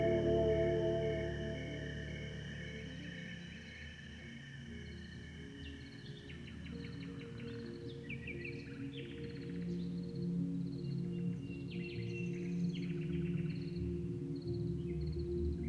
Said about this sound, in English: Aurelia didn't realize that the birds sing all night on her farm in the Loire Valley.